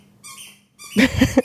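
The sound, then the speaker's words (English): A squeaky toy called Mr. Lammy being squeezed: a thin, high-pitched squeal, a brief pause, then a louder burst of several rapid squeaks. “Like squeaky toy in the background.”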